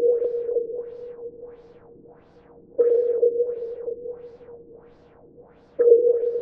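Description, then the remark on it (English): A sonar ping sound effect: three sharp, mid-pitched pings about three seconds apart, each fading slowly through a rapid pulsing echo. No voices. “Let's go ahead and put our sonar on and see what's in our future.”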